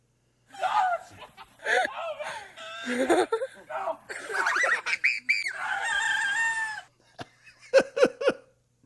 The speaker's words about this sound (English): he had a confrontation with one of his roosters, so he decided to go into the chicken coop to confront the rooster with an attitude.